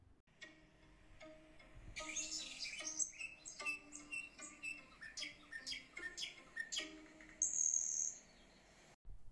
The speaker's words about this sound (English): every morning, the morning birds would gather to enjoy their yummy feed and return the favor by serenading her with their delightful chirping.